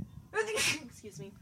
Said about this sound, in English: sorry, I'm going to sneeze. Excuse me.